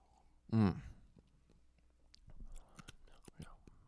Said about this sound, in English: Yeah, you like that? I'm chewing fucking ice right now.